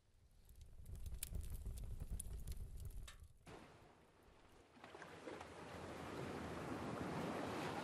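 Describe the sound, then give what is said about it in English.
Ocean waves on a beach, beginning as a low rumbling roll with faint crackles, then breaking into a loud, steady hiss of surf that carries through to the end. No voices. “we've got fire and we have a beach and we've got a bar and a boat and the woods.”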